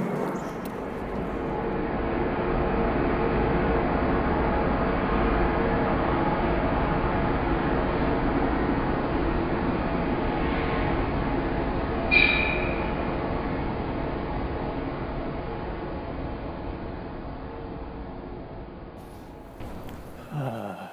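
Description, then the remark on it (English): A train rumbles past a train platform at the Loyola stop at almost 8 at night, a broad roaring swell that builds, holds for several seconds with a brief high metallic squeal midway, then fades away as it passes. “I am on a train platform right now.”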